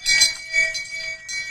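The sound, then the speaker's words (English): A handbell sound played from the Shame Bell app on a phone clangs in a few quick successive strikes, its bright metallic tone ringing on steadily between hits, with no talking over it. “Open the Shame Bell app.”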